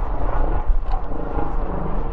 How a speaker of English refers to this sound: Can you hear the helicopter going over me?